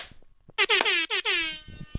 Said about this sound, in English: Stop. Why are you doing this to me? Stupid rap air horn.